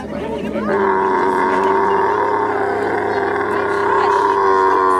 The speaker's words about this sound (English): Yes, camels are mean and they can scream. Listen to this scream. Listen to this.